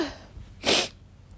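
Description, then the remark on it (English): A single sharp sneeze from a person who is a little sick, a quick loud spray of noise lasting a fraction of a second amid otherwise quiet background tone. “So if I'm sniffling, sneezing, I'm so sorry.”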